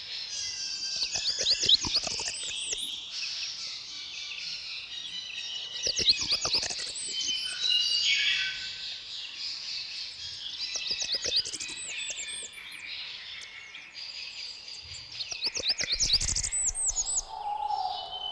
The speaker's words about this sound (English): Songs of blackburnian warblers are extremely high-pitched and wiry, but emphatic.